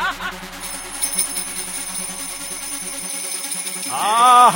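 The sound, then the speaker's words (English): Sleigh bells shaken in a steady rhythm, a bright continuous jingle with a sustained tone underneath, and a voice briefly joining near the end. “I reckon people need to take sleigh bells to raves.”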